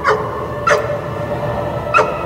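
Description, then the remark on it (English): Three sharp dog barks ring out at uneven intervals over a steady outdoor crowd murmur at a blessing of the animals during a Feast of St. Francis festival at the Cathedral of St. John the Divine, Amsterdam and 112th; the barks are clear against the background din. “The dogs were allowed to bark and the goats were allowed to bleat.”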